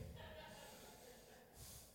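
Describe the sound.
A voice imitates loud snoring: a rough, rattling snort held for about two seconds, ending in a breathy hiss, with no words spoken.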